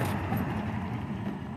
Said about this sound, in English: There goes the milk pickup truck